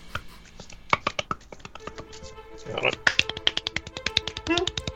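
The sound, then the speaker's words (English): Someone imitates a praying mantis clapping with a rapid, uneven flurry of sharp little claps and clicks, like many tiny hands patting at once, growing denser and busier toward the end. “That's how a praying mantis would clap. Six sets of hands clapping.”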